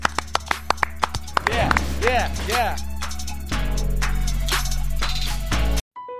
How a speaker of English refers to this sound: Clap it up. Clap it up.